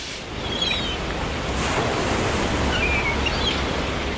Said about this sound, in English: Two blocks from the thunder of the surf on New Brighton Beach near Christchurch